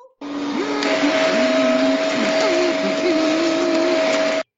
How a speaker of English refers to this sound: Yeah, I like that part, especially at the end where Marge is using two vacuum cleaners to drown Bart out.